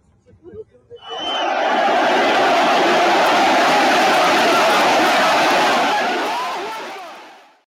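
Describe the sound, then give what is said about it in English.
An angry crowd of hundreds of people with signs roars and chants in an airport terminal, a dense, loud wall of many voices that rises abruptly after a brief quieter murmur and holds steady for several seconds before fading out. “It looked like an angry lynch mob.”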